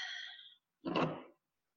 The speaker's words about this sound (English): So take another deep breath, breathing in from your belly, letting your belly expand.